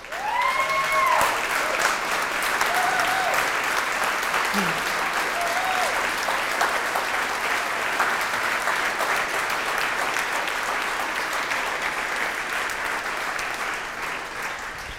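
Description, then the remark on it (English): Sustained applause from a large audience at an event, for current and former SAR members asked to stand up, fills the whole stretch, a dense steady wash of clapping with a few whoops and cheers rising over it early on. “I've got a captive audience and you guys deserve a round of applause.”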